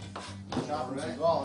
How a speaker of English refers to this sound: Chopping some garlic too over here.